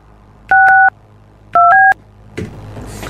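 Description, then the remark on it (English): Two quick bursts of telephone keypad tones as a phone number is dialed, each a pair of short dual-pitch beeps, sounding clearly and loudly, followed by a brief rustling clatter near the end. “Lots of numbers in there. It's like plus signs and minus.”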